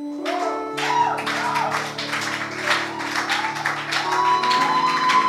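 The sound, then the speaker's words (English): An audience stands and claps together, giving thanks to God, in a steady, continuous wash of hand claps over sustained low organ or keyboard chords, fairly loud throughout the few seconds. “Please, let's stand on our feet. And with a clap.”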